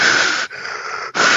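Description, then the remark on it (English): A voice imitates heavy, raspy, respirator-like Darth Vader breathing into a microphone: a loud hissing breath, a quieter rasping one, then another loud hiss, with no talking. “And I moved my microphone away so I don't have the Darth Vader breathing, because like I did a Snapchat earlier and all I heard was.”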